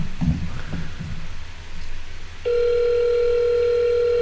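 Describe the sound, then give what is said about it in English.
A steady electronic phone tone of a call to a Ukrainian hotel begins about halfway through and holds unbroken to the end, loud and clear over faint background rumble, like a call ringing on the line. “Ringing. This one's ringing.”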